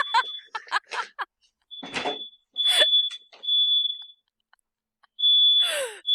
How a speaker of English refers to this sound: My fire alarm is going off, but I'll be right back.